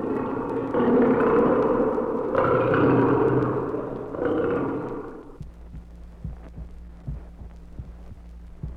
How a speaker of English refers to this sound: The roar of a lion.